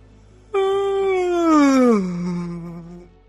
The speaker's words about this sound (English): As you're about to say something, to whisper, your cat snake will crack an eye open. And then it will yawn.